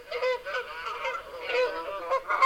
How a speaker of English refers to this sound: That's right. A goose.